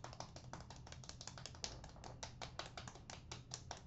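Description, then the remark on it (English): A soft, quick patter of light golf claps given on a count of three for Vic Joseph's candy, many small dry taps in a steady, fairly even stream, restrained and polite rather than loud, with no voices during the applause. “to be a smartass, golf clap for Vic Joseph's candy, please, on three.”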